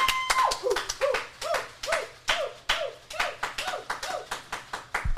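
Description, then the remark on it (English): A small group claps unevenly, with pistachios rattling, while someone lets out a steady run of short, rising-and-falling whoops, about two per second, fairly loud, with no talking. “Now, that might have been one of the most original round of applause we've ever had.”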